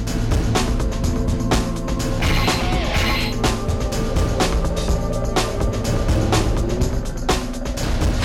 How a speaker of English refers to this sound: Yeah, 70 miles an hour, and just stay within like a car length of each other, and just keep overtaking each other one pass to the other, okay?